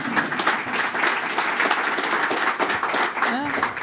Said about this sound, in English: A round of applause for your wonderful new office.